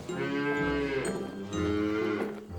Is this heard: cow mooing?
yes